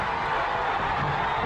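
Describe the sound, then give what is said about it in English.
A large wrestling arena crowd cheers and roars during a match of Sting and Luger against Harlem Heat, in a dense, unbroken wash of noise that stays loud and steady throughout, with no single voice standing out. “Crowd's going crazy.”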